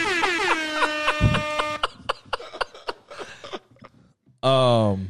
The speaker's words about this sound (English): I will, since it's been about a week, I will salute Terrence Crawford on his victory. Give him the air horns.